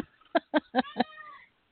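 A pet cat, Sarah, meows four times in quick succession in the background, short rhythmic calls followed by a longer trailing one, moderately loud with no talking.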